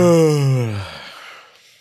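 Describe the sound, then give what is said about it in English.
A single loud, drawn-out yawn: a strong voiced tone sliding downward in pitch, then trailing off into a breathy exhale. It stands alone, with no talking. “yawns loudly.”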